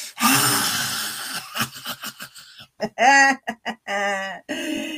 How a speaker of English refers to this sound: There's so many wonderful breathing techniques. Share yours in the comments. Lion's breath.